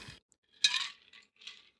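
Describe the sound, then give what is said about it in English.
A shaken Corpse Reviver No. 2 cocktail is poured into a Nick and Nora glass in a few short bursts, with bright clinks and a brief splashing rush between quiet gaps. No one speaks. “Pour that into the Nicanora.”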